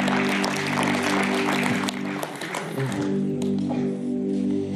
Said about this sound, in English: I tell young people all the time, that's a nice courtesy clap.